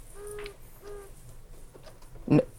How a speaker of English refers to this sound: This is a podcast. We can't have just random bird sounds going off in the middle of a podcast.